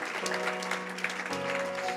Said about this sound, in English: Let's give Father a round of applause, because that's just awesome.